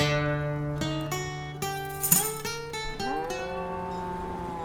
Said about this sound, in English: Oh, I should have known I couldn't have beaten the 4 p.m. cattle crossing.